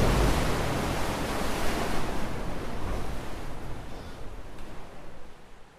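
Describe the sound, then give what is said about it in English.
Ocean waves wash onto a beach in a steady, hissing roar, loud, with the surf gently surging and easing slightly toward the end. No voices. “The trio sits on the beach, watching the flying machine sink beneath the waves.”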